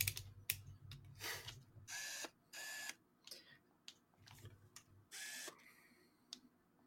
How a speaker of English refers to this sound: Those little tiny shutter noises are fucking hilarious, because it just sounds like, with no vision, when you're just shouting this camera to do it, and it just makes those two little clicks.